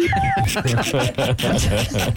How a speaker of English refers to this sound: We are running out of beeps. Yeah, we are. We don't have an unlimited amount.